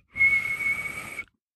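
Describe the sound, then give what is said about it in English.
A referee blows a whistle to start a game: a single breathy blast, held steady for about a second, fairly loud, with a hissy, airy edge and no other sounds around it. “The whistle blows. That was a terrible whistle.”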